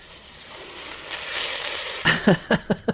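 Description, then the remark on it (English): A person imitates a snake with a long, steady hiss lasting about two seconds, then a quick series of four or five short, sharp hissing bursts, fairly loud. “The snakes come back.”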